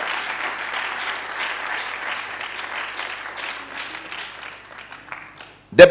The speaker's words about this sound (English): Your clapping doesn't seem like you are a blessing.